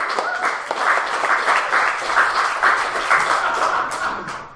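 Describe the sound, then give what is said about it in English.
A crowd applauds a local friend who is going to present, a dense patter of many hands clapping at once, holding fairly even in loudness before tapering slightly at the end. “Please give a round of applause for our friend.”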